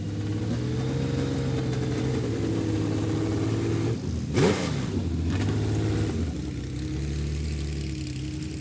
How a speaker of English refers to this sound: And here goes Marino Franchitti in this glorious Ferrari. He's making direct eye contact whilst revving